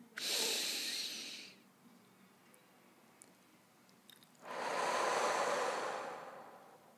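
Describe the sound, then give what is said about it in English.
A slow, deep breath drawn in, a soft airy hiss, followed after a quiet pause by a longer audible exhale, taken by a person sitting on a meditation cushion during meditation. No one speaks. “I'm going to feel my body, feel how my butt cheeks are sitting on the meditation cushion. Breathe in.”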